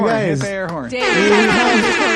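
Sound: air horn sound effect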